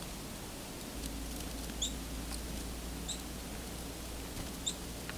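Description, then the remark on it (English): A red-breasted nuthatch only a couple of feet away gives three brief, high-pitched squeaks, each a quick doubled note, spaced irregularly over a low, steady background rumble. “And nuthatch coming very close to me here, red-breast. Red-breast nuthatch.”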